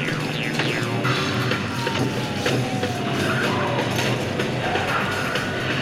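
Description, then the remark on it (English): A vehicle speeds off with tires skidding, a loud, continuous roar of engine and road noise with a squealing tone sliding gradually downward for several seconds. “I'm driving away! I am driving away!”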